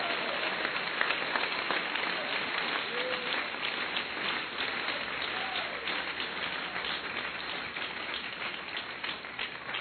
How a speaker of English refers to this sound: Your clapping is very weak. It is the disloyal people who are not clapping properly.